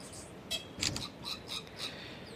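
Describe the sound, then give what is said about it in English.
A series of about five quick, crisp camera shutter clicks taking pictures of a Pohutukawa tree, unevenly spaced over two seconds, with no talking and only a faint background hiss between them. “So I'll take a picture of this tree here.”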